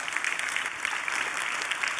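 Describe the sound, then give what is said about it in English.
An audience at Covenant EFC church applauds its leadership steadily, a dense wash of many hands clapping at once with no pauses, holding an even, moderate loudness throughout. “So please give your leadership a round of applause.”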